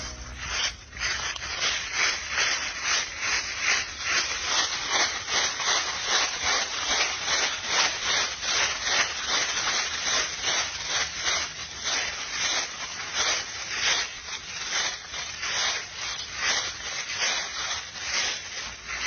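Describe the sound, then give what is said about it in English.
Dry leaves crunch underfoot as a woman walks her dog, in a steady walking rhythm, each step a crisp, rustling burst that repeats evenly for the whole stretch, with no voices. “If you couldn't tell, it's the crunch of leaves as she walks her dog.”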